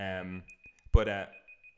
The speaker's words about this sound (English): Hang on, we have a little beeping here. Ladies and gentlemen. Oh, it's the stopwatch. Just hang on a second. It's the stopwatch.